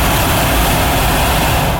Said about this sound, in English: This noise that you're hearing behind is the hot air balloons all getting set up. So you can hear all the fire going in.